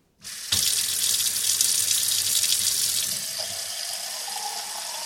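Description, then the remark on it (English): Water runs steadily from a tap into a glass, a bright rushing hiss that starts abruptly after a short silence and shifts slightly in pitch as the glass fills. No voices. “And now, if you'll excuse me, I'm off to have a nice cool glass of dihydrogen monoxide.”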